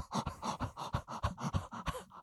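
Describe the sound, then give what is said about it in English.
A person imitates a dog's heavy panting, a fast, steady run of about eight loud, breathy huffs with no speech, mimicking a dog carrying a mother drake duck in its mouth after a three-quarter mile run. “He ain't got COPD, but he's breathing like he did.”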